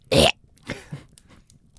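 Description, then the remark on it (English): A short, loud little burp bursts out, followed by a few softer, scattered throaty noises fading into quiet. “I'm going to burp in 3, 2, 1.”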